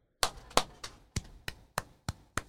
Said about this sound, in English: Okay. Okay. So clap for Gary.